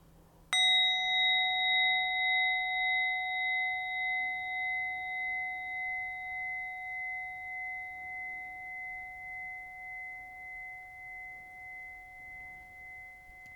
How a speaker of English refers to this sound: And completing this meditation with the sound of the bell, please take 3 deep breaths in if that feels good.